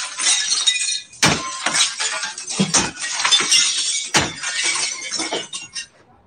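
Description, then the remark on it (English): Glass breaks and shatters repeatedly at an apartment, where a woman gets glass in her eye and is cut, with sharp crashing impacts followed by tinkling shards, loud, continuing in bursts for several seconds. “She getting glass in her eye.”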